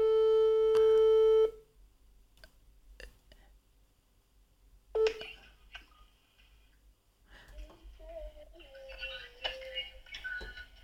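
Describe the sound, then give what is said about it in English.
A loud, steady telephone tone sounds for about a second and a half as a call is dialed and goes unanswered, then gives way to faint clicks, a short second beep, and soft warbling tones toward the end. “Answer your phone.”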